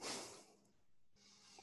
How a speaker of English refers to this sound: Sorry, I've got a cough.